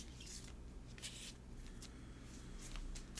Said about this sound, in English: Okay, we're just shuffling the deck.